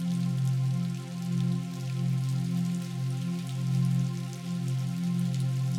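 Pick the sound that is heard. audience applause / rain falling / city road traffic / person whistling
rain falling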